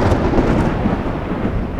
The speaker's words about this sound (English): A rolling moan of thunder reminded Scotty of what he had expected for some weeks now.